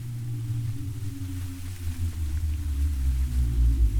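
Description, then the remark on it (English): A deep, hollow rumbling from inside a whale rolls on steadily without a break, heavy and low, swelling slightly toward the end. No voices are heard. “From deep inside the whale there comes a dark, hollow, subcutaneous rumbling.”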